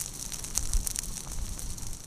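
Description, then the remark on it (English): A slow-burning fire moving across a wooded Ozark landscape in the Current River Pinery, a pine-oak woodland: a soft, steady hiss with scattered faint crackles and pops over a low rumble, fairly quiet throughout, with no voices. “a fire is moving slowly across a wooded Ozark landscape in the Current River Pinery.”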